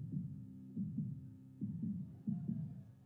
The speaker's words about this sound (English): Hear it? Could you put your hand by your heart and feel your heartbeat?